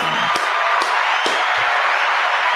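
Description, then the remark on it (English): A steady wash of applause from a group, dense and fairly loud, with a few sharper individual claps standing out at the start, clapping for Ole Miss coach Coach Yo. “Yeah, clap it up for her, Coach Yo.”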